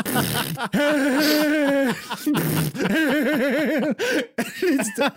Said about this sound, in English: And, it's like pick the cow on this shot. And, it's got two other ones that are wrong on it. Well, he will purposefully pick the wrong ones just to hear the fart noises. And so you'll hear.